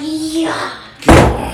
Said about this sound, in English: Sorry. She slams doors.